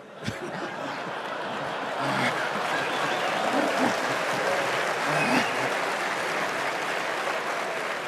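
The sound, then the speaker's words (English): A large crowd applauds steadily for about eight seconds, a dense, even wash of clapping with scattered chuckles and laughter mixed in. “I hope you're applauding over her coming to Berkshire, not being free, but I'll leave that up there.”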